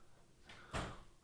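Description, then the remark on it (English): A single short thump and rattle as someone, a grandson just home from school, tries to open a door, fairly loud, with no one talking. “So somebody's trying to get my door over here.”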